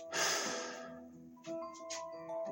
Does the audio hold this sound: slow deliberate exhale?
yes